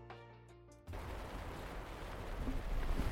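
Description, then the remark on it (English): Rain patters on a teepee at a camp in Greenland, with a river running in the background: a dense, irregular tapping over a steady hiss that grows slightly louder, right after a brief sustained musical tone cuts off. “That tip-tap sound is the rain on my teepee.”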